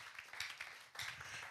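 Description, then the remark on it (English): A church audience claps for God during a sermon in a dense, steady wash of many hands, swelling in intensity twice before settling back, with no voices clearly standing out. “Give God a clap of it.”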